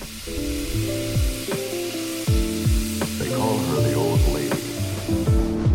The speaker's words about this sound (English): I'm told it's about a 40-minute journey to Buxton, which is our next stop, and I believe we'll be terminating there and turning back around. So I'm just going to enjoy the scenery as we go by, and you can hear some fantastic train sounds.